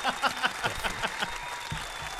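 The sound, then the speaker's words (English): An applause sound effect: clapping from a crowd in a dense, steady patter of overlapping handclaps, moderately loud, with no voices over it. “And right now, I just want to give a round of applause for all the champions and the black women out there doing it great.”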